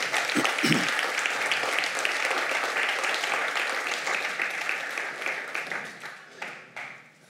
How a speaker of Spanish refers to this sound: Dele un aplauso a Él.